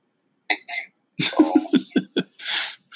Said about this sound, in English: If you have to sneeze, you got to sneeze. It's natural.